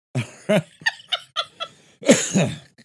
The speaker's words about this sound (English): I do apologize for coughing.